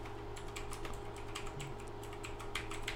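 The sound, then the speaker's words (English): Rapid computer keyboard typing, a steady patter of crisp key clicks, uneven in rhythm with short bursts, over a low constant hum and no speech. “Click it in, backspace a lot, so it sounds like you're doing things.”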